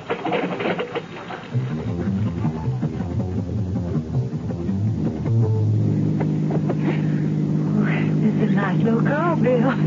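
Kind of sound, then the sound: vehicle, car engine driving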